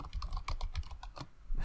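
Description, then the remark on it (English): Rapid typing on a computer keyboard into an online document, a quick irregular run of light clicks and taps, with no voices over it. “I see you typing it out in the Google Doc right now.”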